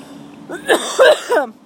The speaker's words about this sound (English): the coughing and the bowl smoking part. It's like morning bowl and then converse, you know? Like, I feel like... Whew, yeah, like, just in the thick of smoking the bowl right now, you know?